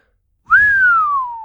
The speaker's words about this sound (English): Zeta whistled.